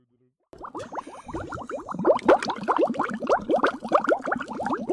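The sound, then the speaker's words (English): Water bubbling and churning continuously in a hot tub high above the Butterfield Park Water Tower after a brief silence, a dense, steady stream of gurgles and pops, moderately loud, with no voices. “Back here in the hot tub high above the Butterfield Park Water Tower”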